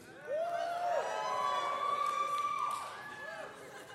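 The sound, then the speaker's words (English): A crowd of moms and dads in the audience lets out a sustained, high-pitched scream and cheer together on a count of three, many voices overlapping loudly for about three seconds before tapering off slightly. “So mom and dad, if you are here with us, I want to give a hearty scream, all right, on the count of three.”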